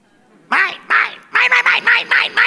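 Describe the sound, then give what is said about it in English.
Cartoon seagulls squawk "mine" loudly, two drawn-out harsh calls followed by a quicker run of five or six nasal squawks, overlapping into a noisy chorus. “The refrain he or she sings is like that of the seagulls in the movie Finding Nemo.”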